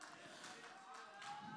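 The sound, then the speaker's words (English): A standing audience claps in praise of the Lord, producing a faint, steady wash of many hands with no clear individual beats and a few brief swells in intensity. “Can we just stand to our feet for a brief moment and give the Lord a hand clap of praise?”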